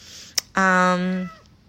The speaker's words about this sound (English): Oh, my cat says hi.